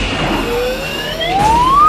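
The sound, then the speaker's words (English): A slide whistle in a film scene where Shredder gets crushed glides steadily upward in pitch, a thin pure tone that grows louder as it climbs, heard over a busy, noisy background. “Slide whistle in there.”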